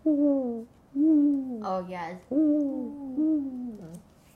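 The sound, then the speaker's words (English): A person imitates a dove's cooing with four fairly loud hooting phrases, each gliding downward in pitch, with brief pauses between them. “Do I sound like a dove?”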